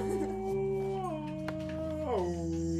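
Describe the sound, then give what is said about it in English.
A person imitates whale noises with a long, sustained moaning cry that holds steady, then slides down in pitch in a couple of steps. The voice is fairly loud, with no talking. “Are you a whale? Whale noises.”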